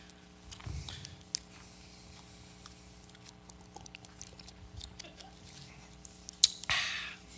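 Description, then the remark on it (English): A man drinks water: quiet sips, soft swallowing and small wet mouth clicks scattered over several seconds, ending with a brief louder slurp. No one speaks. “He drank the water of life.”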